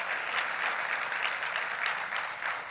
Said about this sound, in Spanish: ¿Cuántos pueden dar un aplauso a aquellos que saben que Dios es bueno?